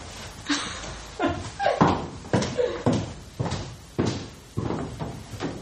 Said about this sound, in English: Another squeaky floor.